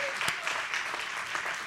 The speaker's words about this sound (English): I give God a hand clap of praise tonight.